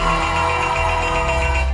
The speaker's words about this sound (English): The top execs at Etsy marked its first day as a public company in the most Etsy way possible by ringing a set of handmade and vintage bells.